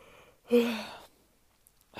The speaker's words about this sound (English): I keep yawning.